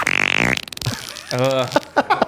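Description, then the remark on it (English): A short, loud, buzzy fart ripples for about half a second at the start, followed by a person talking. “That all right, fart one more time.”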